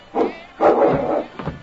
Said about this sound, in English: I ain't going in there till you got that dog locked up. Did you get the door unlocked? Yeah. And that mud almost tore it down trying to get at me.